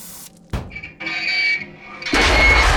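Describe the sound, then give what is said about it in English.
An oxyacetylene torch cuts through a metal door: a sharp bang, then a steady hissing roar with a thin, high whine, swelling into a loud, rumbling blast of noise. No one speaks. “Tim's going to use an oxyacetylene torch on the door.”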